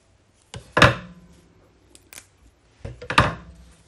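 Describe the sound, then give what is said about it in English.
Scissors snip through fresh parsley and thyme: two bursts of crisp, sharp cuts a couple of seconds apart, with a few faint clicks in between and no talking. “And the next is parsley and the thyme. Just using scissors, actually, I just find it easier.”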